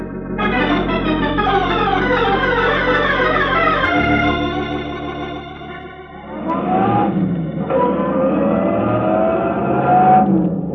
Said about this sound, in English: I gunned out of the alley and turned left on Vine.